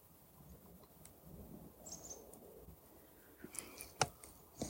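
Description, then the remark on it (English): A raven gives a few short, harsh calls toward the end, fairly faint, over a steady low outdoor rumble with no one speaking. “So coming back to the railway track, Raven, hello.”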